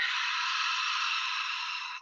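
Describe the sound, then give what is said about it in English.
A long, steady deep breath drawn in through the nose for about two seconds, airy, with an even hiss that holds throughout and cuts off sharply at the end. No talking. “Maybe a few deep breaths with me.”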